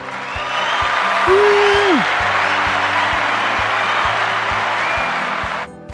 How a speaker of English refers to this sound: I'll add in some cheering.